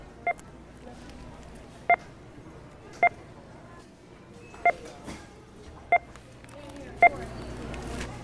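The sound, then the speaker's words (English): Six short, sharp checkout scanner beeps, recorded at a checkout line in the Bay Area, sound at uneven intervals, each a clean electronic tone, over a steady background of indistinct store murmur and faint chatter. “checkout line. We use those beeps to create this piece we're about to listen to.”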